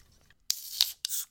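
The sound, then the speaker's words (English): Cans of lager snap open in quick succession, three sharp cracks each followed by a bright, fizzing hiss of escaping carbonation, before the beer is poured, with no talking. “I kind of hope it's going to be a good lager, but let's crack them open and find out.”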